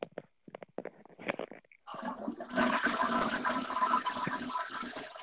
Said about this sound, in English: God damn, you put the phone right by the fucking toilet, didn't you? I'm bent over. It was so loud. Oh, fucking, there it goes. Oh, we're good, everybody. God damn it, I fucking heard it like gurgle up and go down.